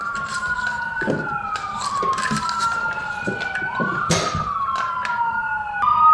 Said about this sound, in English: Oh, wow. It's a fire truck and an ambulance. I hope everybody's okay.